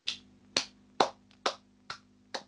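Someone standing gives a slow, steady, patronising round of hand clapping: about six sharp, bright claps evenly spaced roughly half a second apart, with no voices, over a faint low hum.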